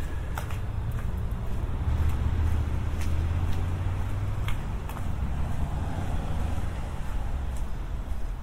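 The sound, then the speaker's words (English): Steady low rumble of street traffic on Highgate High Street, continuous, easing slightly toward the end as the listener walks off the street down a path toward Pond Square. Light scattered clicks and scuffs sound on top, and no one speaks. “You can hear immediately the traffic drops away.”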